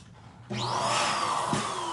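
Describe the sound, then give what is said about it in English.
A Leike electric balloon pump switches on abruptly and runs with a steady, loud motorized whir and airy rush, a high whine riding on top, continuing without pause to the end. “All right, so if you're just joining, this is the Leike electric balloon pump.”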